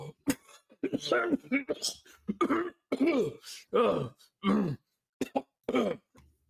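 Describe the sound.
A voice acts out a theatrical coughing fit for a spectral ghost character during a game: a rapid series of hacking coughs and throat-clearing bursts, fairly loud, broken by short gasping pauses.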